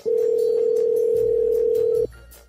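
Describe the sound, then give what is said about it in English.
The ringing tone of a call to a mobile phone sounds once as a steady, loud electronic hum lasting about two seconds, then cuts off, leaving only a faint low background rumble. “let's try this one here and see if this is Cork”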